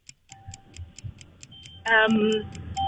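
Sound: clock ticking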